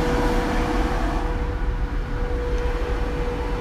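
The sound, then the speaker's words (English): A truck engine struggles steadily uphill, a loud continuous low rumble with a sustained whining tone running through it, unbroken for the whole stretch. “Truck's struggling to get uphill, dude.”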